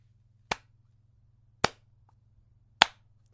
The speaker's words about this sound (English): Slow clap, mate. That was beautiful. Well done.